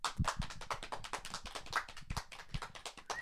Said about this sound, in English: Applauding sound effect.